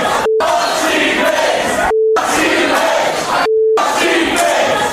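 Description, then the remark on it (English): A loud crowd filling a room boos a speaker and chants in a continuous roar, cut three times by short, steady censor bleeps that briefly silence the noise. “the entire room starts booing me. And then they start chanting.”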